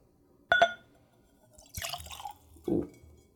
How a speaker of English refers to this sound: So I am tasting with a clean Glencairn. It's a whiskey nosing glass, perfect for seeing a spirit, nosing a spirit, and tasting a spirit. Let's go for a pour.